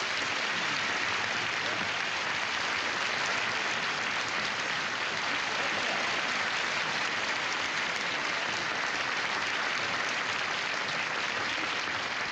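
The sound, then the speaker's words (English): Sustained audience applause at Milton's telethon fills the whole stretch, a dense, steady wash of clapping hands with no pauses or voices rising above it, holding at an even loudness throughout. “I was all the way up my dressing room when I heard the applause.”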